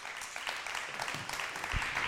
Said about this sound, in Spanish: Hoy tenemos con nosotros a Mario Escobar. Mario, ¿puedes salir, por favor? ¡Damos un aplauso a Mario!